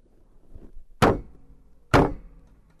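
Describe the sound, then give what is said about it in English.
Two heavy thuds about a second apart, a person's head banging down on a table, each a loud impact with a short ringing decay, over a quiet low rumble. “That's my head banging on the table.”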